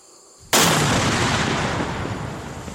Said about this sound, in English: Whew. Unbelievable. 30-foot by 60-foot explosion, just from this one little device. One more down, 4 or 5 million to go.